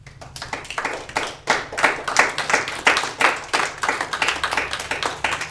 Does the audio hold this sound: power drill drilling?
no